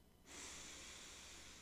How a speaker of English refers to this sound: I want you to close your eyes. Take a deep breath in through the nose, breathing into your belly, not your lungs.